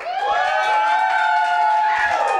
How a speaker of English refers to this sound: Okay, if you want us to watch …, clap and yell and hoot and holler.